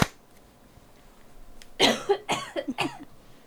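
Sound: cough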